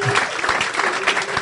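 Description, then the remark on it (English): An audience claps for the Lord in a dense, steady burst of applause, loud and continuous with many overlapping hand claps throughout. “If you are blessed today, please give the Lord a resounding clap.”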